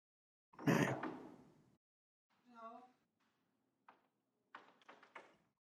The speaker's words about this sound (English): You can really hear the little sounds of the ship, the creak of the boards, the yardarm, the... They are very subtle sounds.